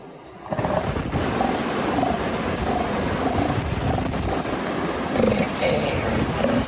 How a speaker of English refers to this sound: As I walked the trail at Año Nuevo to get to the beach where the elephant seals were, I could start to hear them. It almost sounded like someone revving a motorcycle.